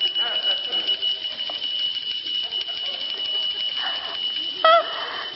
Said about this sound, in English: All right. We all got our bells. Give them a good shake.